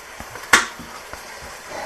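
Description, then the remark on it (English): A knife chops baby carrots into small circles on a cutting board, the carrot held with a finger: one sharp, loud thunk stands out among a few softer, irregular taps, with no one talking. “I got them on a cutting board, and then we're just going to chop to make them into nice little small circles.”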